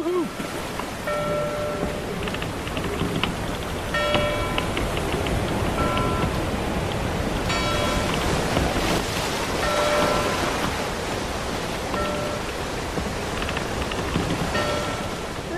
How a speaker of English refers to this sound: And that bell means that the Argosy has pulled into port with some juicy mail for us.